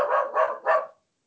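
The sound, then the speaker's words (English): A female dog barks three times in quick succession, fairly loud, each bark short and sharp with brief pauses between, then silence. No one speaks. “She didn't break the entire time I was on the phone, but of course, the second I come back to podcasting, what's right?”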